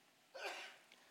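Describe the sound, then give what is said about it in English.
A single quiet sneeze, a short breathy burst that swells quickly and trails off, with no talking around it. “Bless you.”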